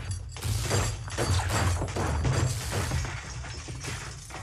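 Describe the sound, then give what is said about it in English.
Quint from Jaws smashes a radio with a bat, knocking out communication: a dense run of cracking, crunching blows and rattling debris, loud and nearly continuous for several seconds over a low, steady rumble, with no voices. “I blame Quint, the subject of this Long in the Works episode, who has been known to take a bat to the occasional radio and knock out communication systems.”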